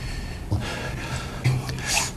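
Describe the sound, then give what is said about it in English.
Three quick nasal sniffles from President Trump during a speech to the American public, spaced roughly a second apart, sharp and breathy, with the last one a little louder. No talking. “With 1,239 awkward Adderall sniffles last night during his speech to the American public.”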